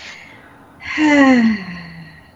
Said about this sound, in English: So she's in a bubble. She's in a bubble, breathing in and out.